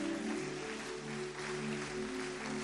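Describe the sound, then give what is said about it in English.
An audience claps steadily throughout to receive a blessing in the name of Jesus, a dense wash of many hands, with a sustained organ-like chord humming underneath. “Clap your hands and receive that blessing in the name of Jesus.”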